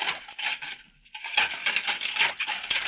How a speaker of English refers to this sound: washing up the dinner dishes